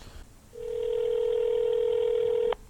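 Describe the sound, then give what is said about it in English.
A single steady ringback tone from an outgoing phone call hums for about two seconds, fairly loud, then cuts off abruptly. No one speaks. “Dude, it's already ringing, bro.”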